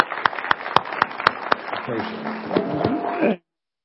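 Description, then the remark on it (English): An audience applauds in a dense, steady wash of clapping, with a few sharper claps standing out early on. Voices rise underneath toward the end before the sound cuts off abruptly. “And so we just want to really applaud you and say thank you.”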